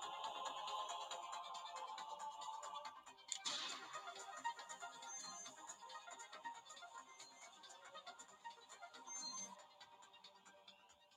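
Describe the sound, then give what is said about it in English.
A tinny electronic jingle, the game show 'ask the audience' lifeline sound, plays from a small phone speaker: a steady run of synthesized tones with a brief brighter swell partway through, fairly quiet and with no one talking. “What sounds it make for ask the audience? Like a ding ding ding ding ding.”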